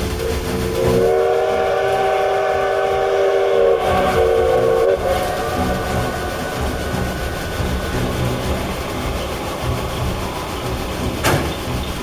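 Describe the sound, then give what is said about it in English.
A steam train's whistle, blown as the train comes out of a curve to pick up speed, sounds one long, steady blast for about four seconds, then fades into the continuous rumble and clatter of the train rolling along, with no voices. “I think we can pick up speed again. I'll blow the whistle.”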